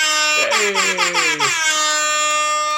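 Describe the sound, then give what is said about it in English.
An air horn sound effect blares in a rapid series of short, loud blasts, then holds one long sustained tone to the end, with no voices over it. “I got an air horn because I was so excited that picket signs, we are 3 for 3.”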